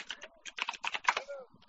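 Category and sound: household object, typing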